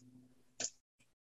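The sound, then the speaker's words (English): A sharp, bright clatter of dice, including stress dice and regular dice rolled for an agility roll, hitting a hard tabletop, followed a moment later by a softer second tap, set against a faint low hum. “Everybody give me a agility roll. Just a straight agility roll.”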